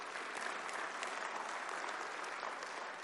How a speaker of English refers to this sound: Would you give these one more round of applause?